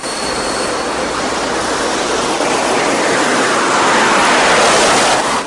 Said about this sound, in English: Erickson throws the plane's thruster forward and they set off down the runway.